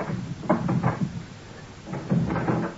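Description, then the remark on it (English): A locked door being unlocked and opened: two short bursts of rattling clunks and knocks, separated by a brief pause, with no one speaking. “I will open the door for you.”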